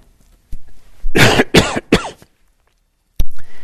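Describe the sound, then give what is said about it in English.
A loud burst of three harsh coughs in quick succession from a person on a day with a fair amount of smoke in the air, followed after a short pause by a sharp throat-clearing cough and a brief breathy sound. “excuse me for a minute while I cough.”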